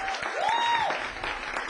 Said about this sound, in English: I think you need to give him a wonderful round of applause because he's doing an awesome job.